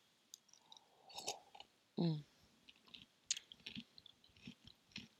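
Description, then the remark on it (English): Someone sips a drink of cucumber water: soft wet lip clicks and smacks, a short throaty gulp partway through, then a few more quiet mouth sounds. “Grab a sip of my”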